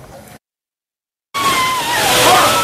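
A bucket of ice water is dumped for the Ice Bucket Challenge and splashes loudly, a sustained rushing spatter lasting over a second after a brief silence, with a voice faintly audible beneath it.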